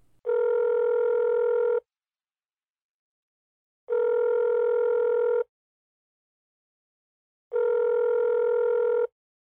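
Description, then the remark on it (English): A payphone in Frank and Mary's diner, with coins slid into the slot, sounds a line tone in three long, evenly spaced buzzy bursts, each about a second and a half, with silence between them. No voices and no distinct dialing beeps. “Finn picks up the phone and slides coins into the slot, trying his best to remember the number.”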